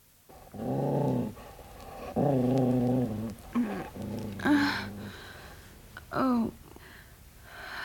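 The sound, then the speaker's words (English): A dog growls in several long, rumbling bursts separated by short pauses, fairly loud, with a few sharper snarling rises toward the end and no one talking. “Does the dog frighten you”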